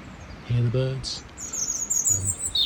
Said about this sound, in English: You can hear the birds.